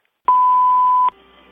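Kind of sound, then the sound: signal or alarm, answering machine beep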